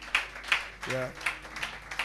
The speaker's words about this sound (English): Will you clap your hands unto Jesus? Yeah.